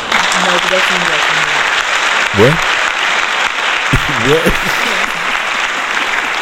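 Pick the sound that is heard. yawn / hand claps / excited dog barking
hand claps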